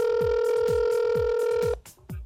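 A telephone ringback tone on an outgoing call from KRKO Radio to a listener: a steady electronic tone holds for nearly two seconds, then cuts off abruptly, with a regular low thumping beat underneath.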